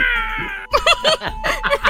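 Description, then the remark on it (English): A voice imitates a cat as a clarion call for cats, starting with a sustained high, steady whine, then breaking into four or five short, wavering meows in quick succession at moderate loudness. “You hear a cat outside?”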